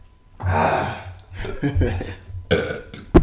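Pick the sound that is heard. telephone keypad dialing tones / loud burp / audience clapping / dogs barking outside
loud burp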